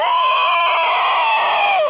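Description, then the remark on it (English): A single blood-curdling yell of the Wendigo at an Ojibwe village rings out loud, a piercing, strained cry held steady for about two seconds before cutting off. No one speaks. “His eyes began to glow brightly, and he yelled out three blood-curdling yells.”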